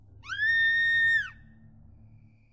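A single loud, high-pitched scream rises sharply, holds steady for about a second, then cuts off, leaving a low rumbling background hum.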